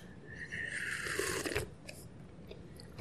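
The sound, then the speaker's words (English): An airy slurp of someone sipping hot black coffee, drawn out for about a second and a half, followed by quiet and a soft click at the end. “And because it's so early, I've got to have a sip of this coffee.”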